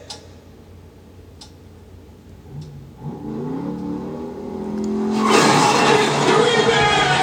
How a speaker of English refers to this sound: What the fuck? A car drove through the set for the music video and everybody dancing.